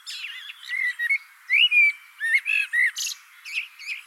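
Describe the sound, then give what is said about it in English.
A blackbird sings a varied run of fluty warbles and chirps, including a copied whistle and clear drawn-out whistled notes, in short bursts over about four seconds, with no talking. “Blackbird has spoken”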